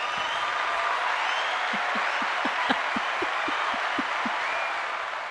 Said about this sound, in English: Really? That's all I get? That's the applause he has? Just 10 seconds? Come on, keep that going.